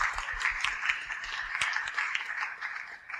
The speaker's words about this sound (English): So let's give another round of applause for volunteers. Thank you, everyone.